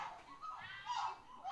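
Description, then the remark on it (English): A woman in a film lets out a drawn-out, wavering howl like a werewolf, her high voice rising and sliding in pitch, loud, with no other talking. “And then she really does sound like a fucking werewolf.”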